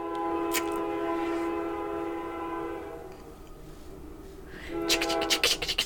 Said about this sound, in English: Train number two, coming through.